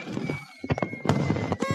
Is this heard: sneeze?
no